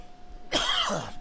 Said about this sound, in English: I swear it's something psychosomatic that makes me cough. I'm sorry.